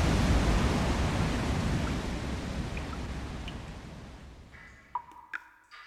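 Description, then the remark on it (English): A steady, loud roar of rushing waterfall water, heard from the top of the waterfall, fills the scene, gradually fading away toward the end, where only a few faint, brief pings and clicks remain. No one speaks. “that's me standing at the top of a waterfall. At least you can hear that.”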